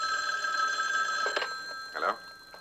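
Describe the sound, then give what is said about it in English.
A telephone rings with a steady electronic trill before a call is taken, its bright tonal pitches sustained across the moment, clear, with a brief louder burst near the end. “I'm going to get a Coke or something, play a phone call or something while I just clear my head, and then we'll come back and take a phone call.”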